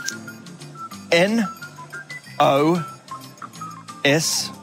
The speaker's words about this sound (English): Can you just test your buzzer for me again? I wasn't quite loud enough.